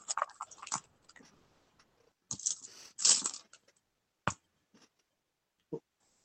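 Pink dice, rolled for a reflex save in a tabletop game, clatter across a hard tabletop: two busy bursts of rattling clicks, then a few separate sharp clacks as they settle, landing on a 2. No one speaks.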